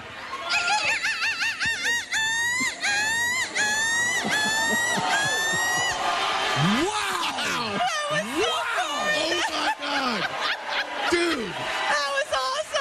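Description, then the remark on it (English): A person imitates a seagull with repeated high, wavering screeches and yelping calls, loud, over a noisy crowd that laughs and cheers throughout, during a seagull-screech contest judged by the crowd. “Give us your best seagull screech.”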